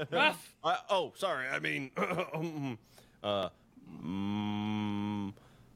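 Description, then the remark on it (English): A person imitates a cow, holding one long, steady moo near the end after a burst of animated vocalizing, clear. “You guys like, well, that's not really the sound a cow makes.”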